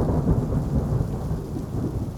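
A thunderstorm with heavy rain: a steady, dense roar of downpour beneath deep rolling thunder, loud, with no voices present.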